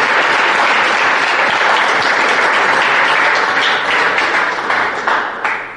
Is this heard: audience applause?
yes